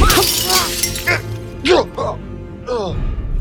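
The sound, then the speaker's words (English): A loud burst of shattering glass crashes at the start as a man's face is slammed into a glass cabinet, with bright breaking debris spilling for about a second while a voice talks over and after it. “I roll, grab a large piece of shattered glass from the floor, and I swing.”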